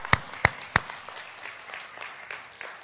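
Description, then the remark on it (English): A church audience applauds for the Lord: three sharp, loud claps ring out at the start, followed by a softer, scattered patter of clapping that gradually thins out. “So when I refer to pastor, let's give it a round of applause for the Lord.”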